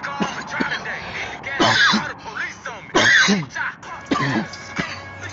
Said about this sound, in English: Smoking all that premium. What's the cough of the day, y'all? You know I got me the cough of the day. I'll give you the strain of the day. We just blowing on that sour blueberry.